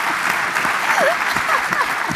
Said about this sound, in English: Let's give Professor Chan a round of applause.